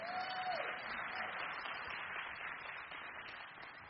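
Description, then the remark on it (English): An audience applauds the first lady steadily, a dense wash of many hands clapping at an even loudness throughout, with a brief faint tone at the start and no clear speech. “Please give the first lady a round of applause.”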